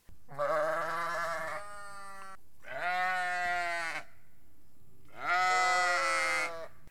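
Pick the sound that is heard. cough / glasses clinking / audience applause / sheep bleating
sheep bleating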